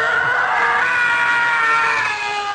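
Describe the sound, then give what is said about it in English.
A single loud, drawn-out stock movie scream, the one used in the movie Fire Down Below: a high-pitched wail held steadily for over two seconds before cutting off abruptly, with no talking over it. “They use this scream in that movie.”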